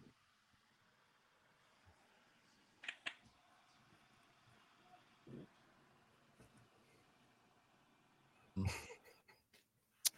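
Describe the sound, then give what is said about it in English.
An audio drop-out: the sound falls away to faint near-silence for about ten seconds, broken only by a few brief crackles and glitchy bursts, with no one speaking. “Yeah, we just lost it there for a minute.”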